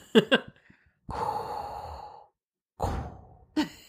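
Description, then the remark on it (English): A person imitates Vader's heavy mechanical respirator breathing: one long, raspy hiss followed by a shorter one, framed by brief throaty vocal bursts. “I can't even do it. The Vader breathing.”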